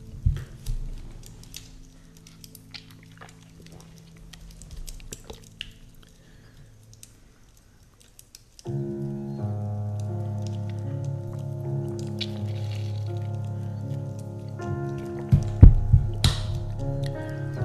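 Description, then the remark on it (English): Quiet clicks and handling noises, then water starts running steadily for several seconds as a glass fills, ending with a few sharp sounds like sips and a set-down. No talking. “Now, before we begin, I'm going to search for the track that I want to use, and I'm going to get some water.”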